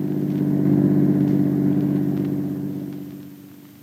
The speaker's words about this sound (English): did you see who was in that car that just passed?